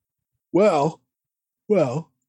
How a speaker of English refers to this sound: He's yawning. He's yawning on the show, yeah.